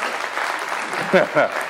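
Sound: audience cheering and applauding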